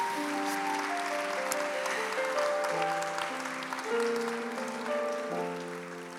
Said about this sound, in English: Let's give him a hand clap of praise again.